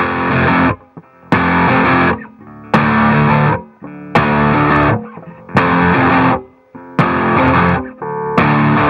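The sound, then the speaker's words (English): Heavily distorted electric guitar hammers out loud, thick chords in short repeated bursts, each cut off by a brief gap, forming a steady stop-start rhythm with no talking. “So for example, there's heavy distortion parts like...”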